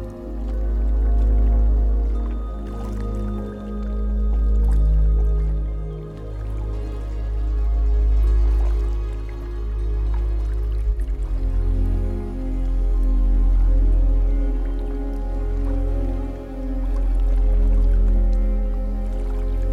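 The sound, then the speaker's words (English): Water trickles and drips steadily in a continuous wash of liquid sound with a low, full rumble beneath, no voices present. “Feel its wetness soothe you. And its sounds relax you deeply.”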